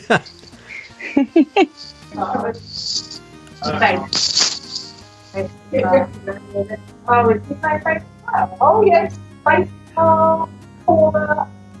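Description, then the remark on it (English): A steady electrical buzz hums beneath the whole recording, a low constant drone on a phone line, while people talk over it in short bursts. “Are you getting that buzz too?”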